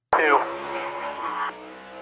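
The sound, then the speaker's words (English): A loud race car engine, heard from the number 9 car's onboard camera, roars at a steady high pitch, starting abruptly and droning on without a break, easing slightly in the final half second. “This is from Chastain's car and showing the onboard camera of it”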